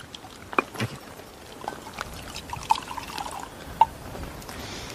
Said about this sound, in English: German lieutenant says, give me a bottle of champagne and a glass. And the soldier says, what? He says, thank you. And the German lieutenant's pouring drinks for everybody.